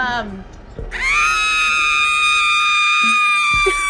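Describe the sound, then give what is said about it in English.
A comically loud, shrill girl's scream in the style of an 80s horror film, held at a steady high pitch for nearly three seconds after a brief lower sound. “And I do like a comically loud 80s girl scream, which I personally can't actually do.”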